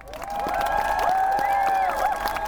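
An outdoor crowd of protesters outside Parliament claps and cheers continuously at the end of a speech, with scattered sharp hand claps under a sustained swell of raised voices and whoops, fairly loud and steady for a few seconds.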